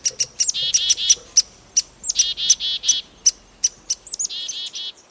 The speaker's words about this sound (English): The watchdog chickadees alert the close-focused woodpecker when there's danger.